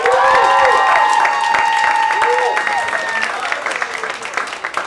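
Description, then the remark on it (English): Loud audience applause at a live show for the comedian guest Vanessa Fraction fills the whole stretch, dense steady clapping with cheers and whoops rising over it, then easing off slightly toward the end. “Give it up for Vanessa Fraction, everybody!”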